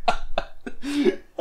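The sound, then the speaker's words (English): A person coughs several times in quick succession during a medical physical examination, fairly loud: short sharp bursts, with one longer strained, voiced cough in the middle before a final hack. “Oh, turn your head and cough again.”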